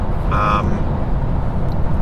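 Steady, loud low-pitched rumble inside the cabin of a V8 Lexus driving on the M4 motorway, road and engine noise droning continuously, with a brief higher tone sounding near the start.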